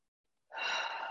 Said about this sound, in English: And so I would like you to breathe in through the nose. And then breathing out through the mouth, through pursed lips. So breathing in through the nose.